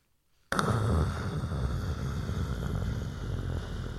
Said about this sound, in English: Give me a sound effect of rain.